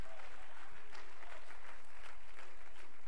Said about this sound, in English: You ought to clap your hands and worship the Lord tonight.